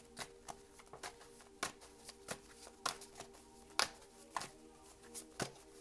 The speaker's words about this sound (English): You know, guys, I like to shuffle until my cards jump out at me.